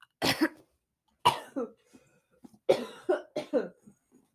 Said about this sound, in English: This is what happens when I get frogs in my throat. Ugh. I'm sorry I've been coughing this whole time.